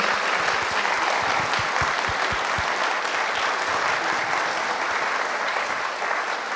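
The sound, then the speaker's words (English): Sustained applause from a large audience for a whole panel, a dense, steady wash of many hands clapping at an even, loud level for several seconds with no talking over it. “And can we just have a really big round of applause again for the whole panel?”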